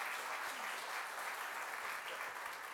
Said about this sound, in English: I think we just need to give them a round of applause.